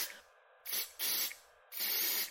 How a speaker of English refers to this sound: Hold on, I need to spray some Febreze.